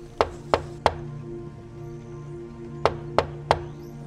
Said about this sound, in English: About 20 minutes goes by as there's a knock at the front door.